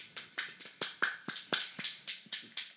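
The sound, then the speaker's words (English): A single person gives a soft golf clap: about eleven light, crisp claps in a steady, unhurried rhythm, each with a quick decay, with no voices. “I golf claps.”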